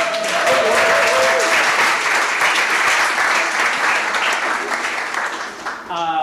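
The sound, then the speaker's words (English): An audience at an evening event at Studio Bar claps steadily for how beautiful the space looks, a dense, sustained round of applause lasting several seconds, fading slightly at the end, with a few brief tonal whistles or cheers mixed in. “And since we're speaking of the space, what about a round of applause for how beautiful it looks?”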